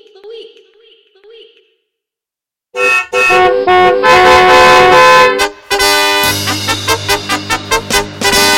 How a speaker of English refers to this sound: The Ridiculous Driver of the Week. Honk, honk.